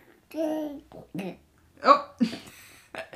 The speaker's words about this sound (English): Oh. A burp.